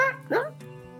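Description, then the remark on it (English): A person briefly imitates the yelp of Maisie, an injured dog: one sharp, rising whine, fairly loud, over a steady low tonal hum that continues after it. “She doesn't look super heavily injured, but it's still damage to your dog,”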